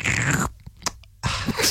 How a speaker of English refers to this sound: An awful noise in my headphones. That's me slurping.